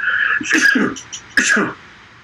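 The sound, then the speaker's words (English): A sharp sneeze erupts in two quick bursts with a breathy hiss, followed by a brief pause, with no talking around it. “Had a sneeze there.”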